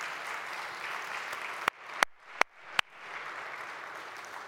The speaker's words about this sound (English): So Mother's Day is not for the faint of heart, and we have real warriors in our midst. Would you give them a round of applause one more time this morning?